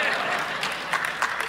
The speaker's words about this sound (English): Now you clap.